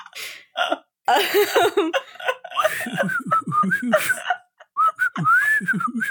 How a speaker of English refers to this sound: Just hands behind your back whistling.